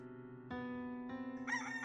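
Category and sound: bird, rooster crowing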